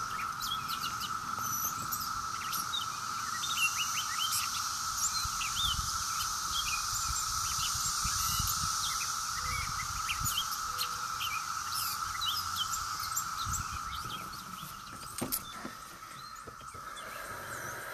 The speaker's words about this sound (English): The sounds of the cicadas, especially this year, is a cacophony of white noise intended to soothe us.